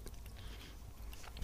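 Wet chewing of raspberry-flavoured dark chocolate, soft squelchy mouth sounds repeating steadily, with a brief sharper crunch near the end and no talking.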